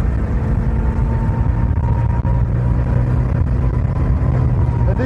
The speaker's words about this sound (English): You've always got to be thinking about it, because being the two-stroke motor, like a lot of motorbikes, if you come off the accelerator, the engine